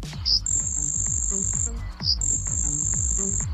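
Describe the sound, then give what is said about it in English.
A grasshopper sparrow sings twice: each song opens with a couple of short chips, then a long, thin, high buzzing trill lasting over a second. The songs are clear over a low background rumble. “When it sings, it kind of sounds like a grasshopper. Here's a grasshopper sparrow.”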